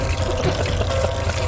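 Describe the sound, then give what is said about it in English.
Gasoline pours steadily into a tank, a continuous, fairly loud splashing rush over a low, steady hum, with no voices. “I'll go fill up the tank in the tank, and I'll start it.”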